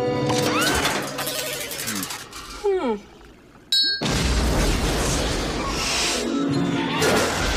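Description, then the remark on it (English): Whining electronic tones and metallic clangs give way to a sudden loud explosion in a basement, set off by an electric charge, followed by several seconds of dense roaring rumble and debris-like noise filling the space. “And he triggers an explosion in the basement.”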